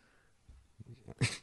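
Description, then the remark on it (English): A dog sniffs at a person's crotch: a few quick, soft snuffling breaths build to one louder, airy snort near the end, with no talking. “Don't sniff my crotch.”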